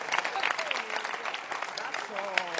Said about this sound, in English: All of you are good. All of you. Clap your hands for all of you.